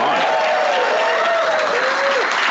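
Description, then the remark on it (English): A crowd at the 90 Minds 8th annual Meeting of the Minds claps steadily in a dense, continuous wash of applause, loud and even throughout, with a faint voice audible underneath. “You're a live applause sign.”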